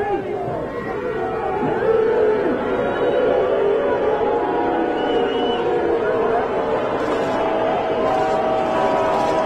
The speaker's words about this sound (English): Now, you would probably have to do a poll of the fans. Why were you booing exactly? I would guess that a little bit of it was, all right, that's enough. You're killing us with this stuff. It's been going on for half an hour.